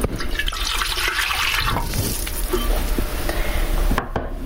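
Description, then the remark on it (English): A steady, hissing stream of water and oil pours for about four seconds with a broad, splashy wash of sound, then cuts off abruptly near the end. No one speaks. “So here goes the water and oil.”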